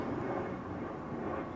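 airplane flying overhead

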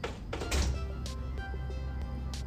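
door being closed

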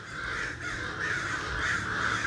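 many crows cawing

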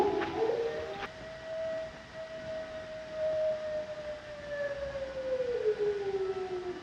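wolves howling

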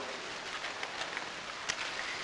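storm with rain

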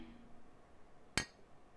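glasses clinking

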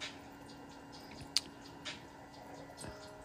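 bubbles

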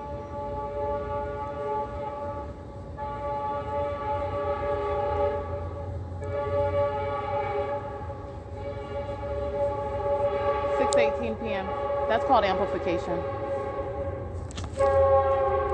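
passing train with horn

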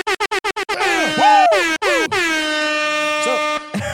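air horn sound effect

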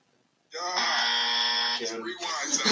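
quiz buzzer pressed

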